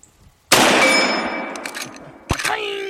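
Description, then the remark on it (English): Two sharp gunshots about two seconds apart, each followed by a bright, lingering metallic ring as the shot hits a big steel gong target far downrange. No one speaks. “The one far away is a big gong that he hits.”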